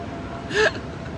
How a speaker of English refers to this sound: Because I sneeze so loud.